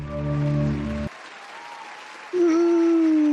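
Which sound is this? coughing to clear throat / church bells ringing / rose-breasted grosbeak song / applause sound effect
applause sound effect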